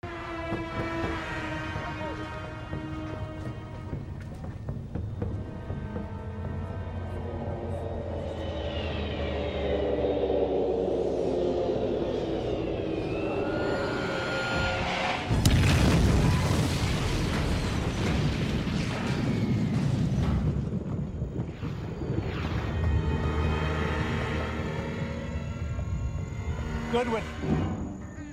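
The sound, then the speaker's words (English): The airliner Oceanic 815 crashing in a TV scene: a loud roar of jet engines with whining pitch sweeps, then a sudden violent burst about halfway through, followed by a sustained rumbling roar and a thin, steady high tone. “And then the man formerly known as Henry Gale, and they look into the sky and they see Oceanic 815 crashing.”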